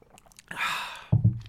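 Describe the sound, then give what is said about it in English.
An airy slurp as someone sips coffee from a cup, followed by a couple of soft low gulps or thuds, with no talking. “I'm going to take a sip of coffee right this minute.”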